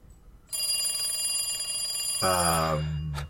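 A telephone rings with a bright, steady, metallic trill that starts abruptly and holds for almost three seconds, fairly loud, with a lower buzzing tone joining near the end.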